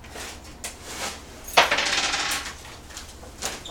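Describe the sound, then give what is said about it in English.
A ten-sided die, rolled for damage in a tabletop game, hits a table with a sharp clack and rattles briefly across the surface before settling. It is fairly quiet, with a few faint taps before and after. “So that's a d10 for damage.”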